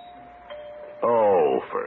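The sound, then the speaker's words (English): A doorbell at a house door, rung by a man standing on the porch, sounds a steady, even tone for about a second, then a louder, richer tone swells in and slowly falls in pitch before fading. “Why is he ringing the doorbell after I left him that note?”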